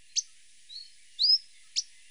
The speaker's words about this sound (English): It's become very hard to hear the song of the akikiki lately, but their more simple call can still be occasionally heard.